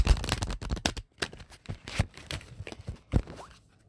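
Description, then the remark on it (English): A deck of cards is shuffled: a fast, dense riffle burst at first, then scattered crisp flicks and taps as the cards are squared and shuffled again, with no talking. “So I'm going to shuffle this two more times.”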